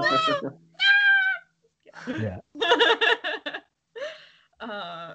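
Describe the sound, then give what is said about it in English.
The screaming gonk droid sound effect from Star Wars, as the droid is branded at Jabba's palace: about six shrill, warbling electronic squeals in quick succession, each a loud, harsh burst with wavering pitch and brief gaps between, with no talking. “The screaming gonk droid when they're branding him at Jabba's palace.”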